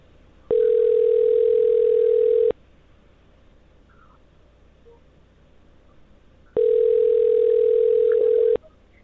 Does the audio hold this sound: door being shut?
no